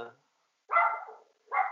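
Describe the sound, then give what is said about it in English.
Two sharp dog barks ring out, the first longer and the second following after a short pause, with a brief bit of speech just before them. “Sorry, you guys, my dog.”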